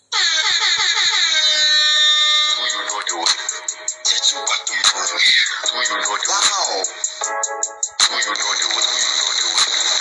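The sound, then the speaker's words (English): A loud air horn alarm sound effect blares for about ten seconds, layered sustained tones with wavering, sweeping pitch and a burst of rapid, stuttering honks toward the end. “Let me sound that alarm one time.”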